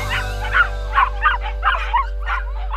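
Several puppies yip and whimper in quick, high-pitched bursts, about seven short calls spread evenly across a few seconds, over a steady low background hum.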